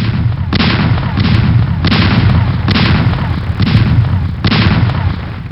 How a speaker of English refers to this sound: All of a sudden, you hear what sounds like cannons.